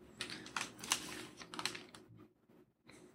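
Quiet typing on an old spare computer keyboard, a flurry of soft, uneven key clicks, trailing off into near silence before a final tap. No one speaks.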